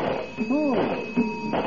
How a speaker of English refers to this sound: Heavenly days, the cash register's gone haywire. Oh, gone, it won't open.